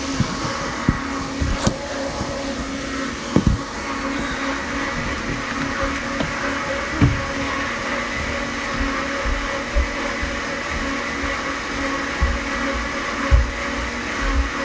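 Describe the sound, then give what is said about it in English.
A blender runs in a home, whirring steadily and loudly for the whole stretch, a dense motor roar with faint clicks and knocks poking through; no one speaks. “Okay, as I was saying, it's like family blender time, so it's all part of the day.”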